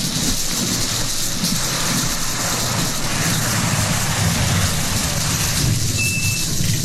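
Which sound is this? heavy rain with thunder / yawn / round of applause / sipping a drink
heavy rain with thunder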